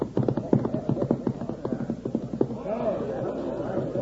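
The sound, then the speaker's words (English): Rapid hoofbeats of a running cutting horse clatter in quick, uneven rhythm, then give way to a softer rumbling tail of movement. A voice seems to murmur faintly underneath. “If it's a cutting horse, it's worth plenty. Well, let's see how he works.”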